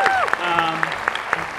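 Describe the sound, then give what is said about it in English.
Brief clapping from an audience giving a round of applause for a producer, sharp claps landing in a steady rhythm about four per second, with cheering or murmuring voices sliding underneath throughout. “I'm going to stop and have us all give him a big round of applause.”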